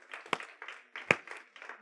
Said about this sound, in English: Yeah, one clap, we all clap. Come on.